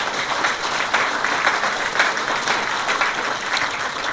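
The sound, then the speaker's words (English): An audience applauds panellists steadily, a dense, sustained patter of many hands clapping at an even loudness for several seconds, with no voices breaking through. “I have some thank yous to do, but how about a round of applause for our wonderful panellists?”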